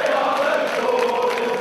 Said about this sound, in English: the sound of Newcastle United fans. They're cheering on a new era for their soccer team.